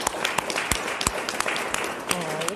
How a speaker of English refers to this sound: Give them a great big round of applause, please.